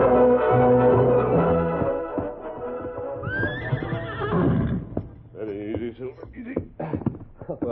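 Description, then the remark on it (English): Brady's horse lets out a loud, quivering whinny midway through, with hooves clip-clopping and steady background sound throughout, followed by a few short vocal sounds toward the end. “Take Brady's horse, that one over there.”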